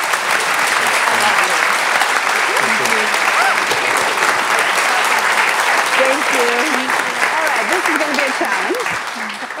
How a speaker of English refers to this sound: Please join me in giving them both a round of applause.